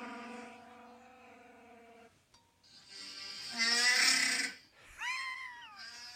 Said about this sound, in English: See, it's a guy pulling a drawer, and it sounds like Chewbacca.